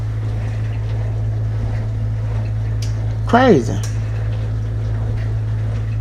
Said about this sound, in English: That's the dishwasher. I apologize for that.